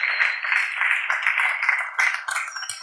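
Sustained audience applause honoring those who serve, a dense, steady wash of many hands clapping at once, fairly loud and unbroken for the whole stretch, with no voices over it.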